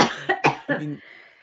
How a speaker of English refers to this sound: All right, I'm going to cough.